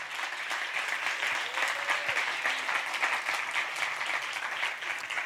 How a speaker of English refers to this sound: Let's just clap. Let's just give God some sort of clap.